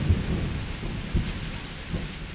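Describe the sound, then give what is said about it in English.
A thunderstorm at sea over a raft on the ocean: steady rain hisses throughout while deep rolls of thunder rumble low and heavy, swelling in a few separate surges over the downpour. “a powerful storm forced all of his supplies to drift into the ocean.”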